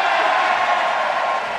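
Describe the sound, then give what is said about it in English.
A large crowd in the House chamber roars and cheers as the Affordable Care Act passes, 220 yeas to 215 nays, in a steady, dense wash of sound that stays loud and unbroken throughout, with no single voice standing out. “And it had been a massive crowd that night in the House chamber.”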